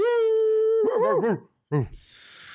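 A dog howls: one long, steady note, then a few wavering, bending yips, a brief pause, and a final short yelp fading into a soft hiss.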